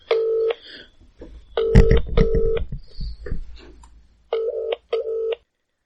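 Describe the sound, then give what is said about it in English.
A phone dials a number: short electronic keypad tones beep in quick succession, two pairs early, a cluster in the middle with some handling noise, then two more clear beeps after a brief pause. “I could just phone her now.”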